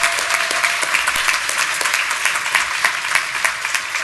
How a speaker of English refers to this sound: We could not put on this conference without them. So, Sage and Intuit, big, big, big round of applause.